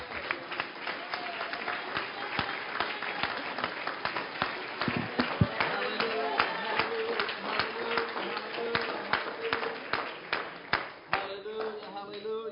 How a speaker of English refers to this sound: Why don't you give the Lord a hand clap of praise?